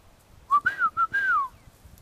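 A person whistles a short call to bring dogs in: four quick tonal notes around one pitch, the last one longer and sliding downward, clear and fairly loud with no talking.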